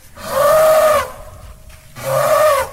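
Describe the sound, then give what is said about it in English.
An elephant calls twice, loud, each blast a brassy, trumpeting tone lasting about a second, separated by a brief quiet gap. No one speaks. “And also those words will not be uttered by our mild mannered and polite elephant.”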